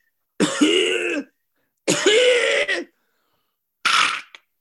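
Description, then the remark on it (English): A person imitates a dog's kennel cough: two long, loud, rasping bursts with a goose-like honking tone, then a shorter, sharp hack at the end, each separated by brief silence. “a very infectious but very sort of distinctive goose honk cough, you know, like a real sort of airway kind of cough”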